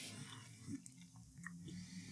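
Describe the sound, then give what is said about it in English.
Quiet chewing of a two-piece cookie from the Netherlands, with soft intermittent crunches and mouth sounds spread over a couple of seconds, with no one talking. “Like, when you bite into it, there's but like a gap.”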